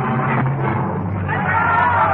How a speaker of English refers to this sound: The dripping blade rises and falls, and the crowd counts in monotonous rhythm as each noble head rolls to the ground.